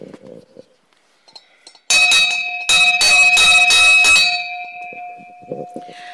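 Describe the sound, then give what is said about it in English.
A big, clangy door bell at a front door is rung loudly outdoors on a cold, windy, wet day, a rapid run of metallic strikes for a couple of seconds, then its bright ringing tone lingers and slowly fades. “But I think there's a big clangy bell here.”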